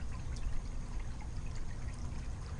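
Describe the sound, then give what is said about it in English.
A little backyard water fountain, where birds drink, trickles steadily at night, a continuous splashing, pouring wash with a low rumble underneath and faint bright drips scattered throughout, fairly quiet and without any talking. “I am recording right now in my backyard, and the sprinklers might be going on at any minute, and I'm sitting here with my laptop, and it's night, and I'm sitting by, I don't know, let me see if you can hear the fountain.”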